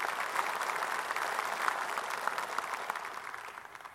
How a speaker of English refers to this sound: Thanks, fellas. You guys want to clap for just the three big old studs up here?